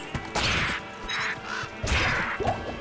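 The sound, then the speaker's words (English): Several harsh, raspy caws of foul crows in a video game come in quick succession, loud, with gritty crunching impacts mixed in and no talking. “Oh wait, these are foul crows' nests. So we're fighting foul crows, my mistake.”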